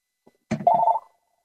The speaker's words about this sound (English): And my phone is ringing.